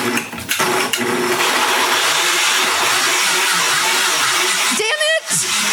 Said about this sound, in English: Pots and pans and open packages are scattered about as she does battle with a blender.